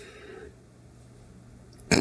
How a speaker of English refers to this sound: Don't stare at me and burp. It's weird.